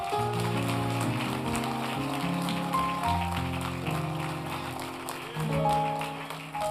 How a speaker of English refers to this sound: Now let's go ahead and give a hand clap for praise.